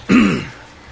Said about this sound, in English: Yeah, it's going to be one of those episodes. Yeah. That's twice on the cough button. Very lungy.